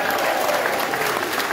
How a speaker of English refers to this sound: Perfect. Like, can I get another cheer